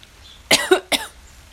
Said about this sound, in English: Excuse me. I keep coughing because I'm like already high as fuck. And my lungs are shit.